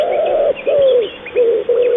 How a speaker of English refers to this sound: A wood pigeon has this call.